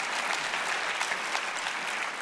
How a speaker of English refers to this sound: Let's give the Lord a hand of applause for that.